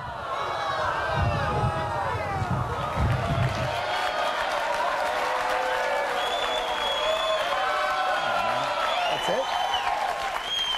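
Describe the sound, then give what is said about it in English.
A large crowd of supporters booing loudly and steadily as a candidate announces he is suspending his presidential campaign, many overlapping voices blending into a sustained roar with scattered claps, a heavy rumble in the first few seconds, then continuing throughout. “Did you hear his crowd? His supporters are like, boo.”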